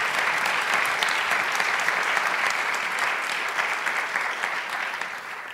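An audience applauds steadily for several seconds to welcome the speakers at an evening event, a dense, even wash of many hands clapping at a loud, constant level with no voices on top, easing slightly at the end.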